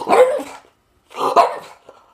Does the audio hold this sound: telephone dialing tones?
no